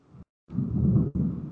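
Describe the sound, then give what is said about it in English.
Deep, rolling thunder rumbles loudly, a heavy low boom that swells and holds for over a second, broken by brief abrupt dropouts, with no voices. “Big ol' thunder. You heard that? That was loud as fuck.”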